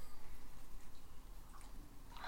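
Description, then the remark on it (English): A dog chews and gnaws on something, making soft, wet, irregular smacking and crunching sounds with no voices. “Sorry, I have to lean away from the microphone because my dog's chewing on something now and I don't know what it is.”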